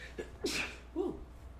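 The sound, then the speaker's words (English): A single sharp sneeze bursts out after a short intake of breath, not loud, followed by a brief low vocal murmur. “Bless you.”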